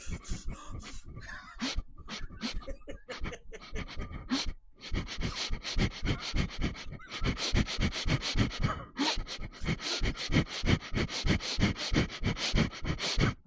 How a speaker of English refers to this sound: That's your breath.